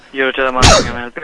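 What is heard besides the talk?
sneeze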